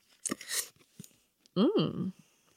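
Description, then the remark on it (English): A short papery rustle of Gabby Bernstein tarot cards being shuffled, then a couple of soft taps as one card is picked, followed by a brief hummed vocal sound with a rising-and-falling pitch. “So I am shuffling. And now I am picking.”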